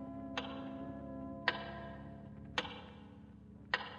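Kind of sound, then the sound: household object, large clock ticking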